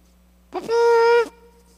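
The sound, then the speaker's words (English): A single short, feeble trumpet blast: a sputtering, breathy start, then a steady brassy tone held for about half a second before cutting off. No talking. “That wasn't much of a trumpet.”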